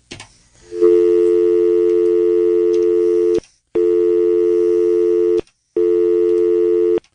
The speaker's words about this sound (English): I cut you off for a dial tone.